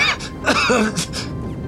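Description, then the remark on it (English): A wounded soldier in a red and gold Cylan Empire uniform coughs up blood in a series of short, rough, fairly loud bursts, with strained, gasping breaths and throaty sounds between them. “He coughs again, his blood streams from his mouth.”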